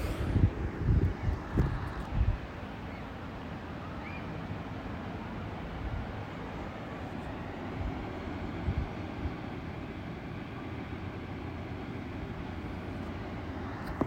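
Ocean waves wash in as a steady, low, rushing roar with a few louder surges in the first couple of seconds, then a continuous even wash with no voices.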